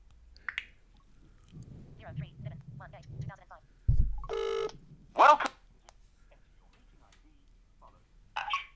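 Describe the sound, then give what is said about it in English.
A couple of short electronic phone keypad tones beep in quick succession, loud, as numbers are dialled to join a Zoom call, after a stretch of muffled, indistinct talking, with a faint chirp at the end. “Okay, if my phone will play ball, we'll soon hear the Zoom man ask us to enter the call meeting button.”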